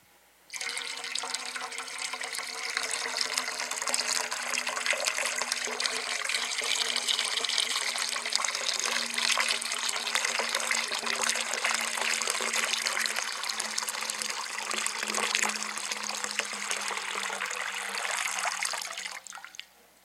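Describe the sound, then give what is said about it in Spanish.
Water gushes steadily from a tap for about twenty seconds, a dense, continuous splashing rush with no voices, starting and stopping abruptly. “La agua se usa para limpiar, algo así.”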